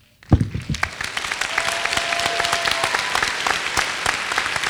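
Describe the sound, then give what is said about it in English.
A crowd breaks into applause for the volunteers after a brief pause, the sustained clapping quickly building to a steady, dense roar of many hands that continues to the end. “Lead us in a round of applause for our volunteers.”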